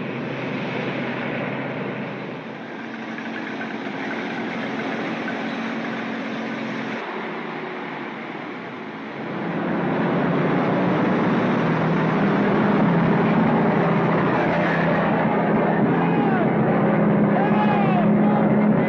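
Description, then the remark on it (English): Heavy truck engines in the film The Wages of Fear rumble steadily, dropping briefly before surging back louder and rougher, with revving pitch swells rising through the final seconds. “And just as Hitchcock mixed his diegetic sounds, here Clouseau rumbles and revs the truck's engines so they feel more and more ominous.”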